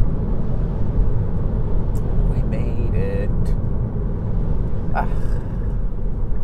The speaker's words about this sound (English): It's miserable out here. The roads are wet. You're getting thrown up mud. Car's getting all dirty. My windshield's dirty.